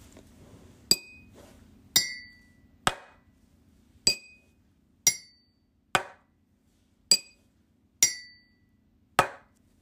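A spoon taps on various household objects such as a cup and a table, about ten separate strikes at a steady pace, each a sharp clink or ring, some bright and glassy, others duller, with short decaying tails. No talking.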